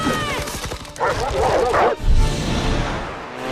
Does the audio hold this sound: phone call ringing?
no